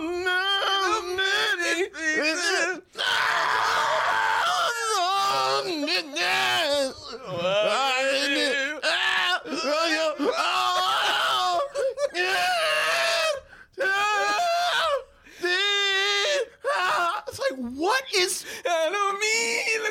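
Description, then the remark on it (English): An R&B song remake from MTV Unplugged sung loudly with strained, yelling vocals, the voice sliding and wavering through long melismatic runs with brief pauses between phrases, intense throughout. “The version with extra yelling and extra sweatiness.”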